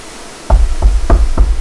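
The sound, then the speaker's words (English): Four firm knocks by a warden on a wooden door, evenly spaced, each a dull low thud with a short resonant tail, with no voices. “The warden knocked at the door and was soon greeted by a scrawny young man”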